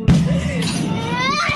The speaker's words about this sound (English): The sound of a Russian fighter jet screaming over a residential area, dropping ordnance and terrifying the family recording the scene.